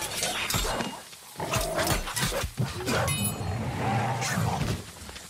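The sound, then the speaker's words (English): War dogs snarl and growl aggressively in a video game, their harsh, overlapping noises running continuously amid a dense, loud wash of combat sound effects. “Defeat war dogs.”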